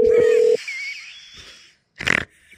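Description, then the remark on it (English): A steady electronic phone ringing tone of a call to Toronto sounds for about half a second, then gives way to a thin fading hiss and a short rough burst of noise near the end. No one speaks. “Let's call Toronto. This is Cam. It's ringing.”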